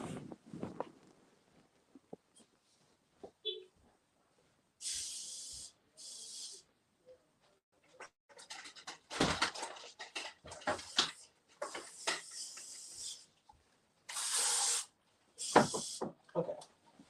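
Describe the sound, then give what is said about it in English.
Several short bursts of aerosol spray hissing, each lasting about a second, in an irregular series with small clicks and rattles between them and no talking. “I'm always spraying lights.”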